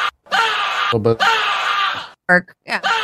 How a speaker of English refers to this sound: Yeah, that's me screaming. Yeah. What made you shit yourself? League of Legends. Rage? That sounds like League of Legends, to be honest.